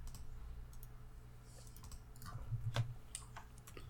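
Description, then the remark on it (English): Quiet, irregular typing on a computer keyboard into a search bar: a loose run of soft key clicks over a low background hum, with no one speaking. “I started typing clap sync into the search bar instead of time.gov.”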